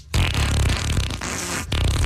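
A loud, wet, sputtering fart sound effect stretched over about two seconds, with a brief break near the end before it rumbles back in. No one speaks.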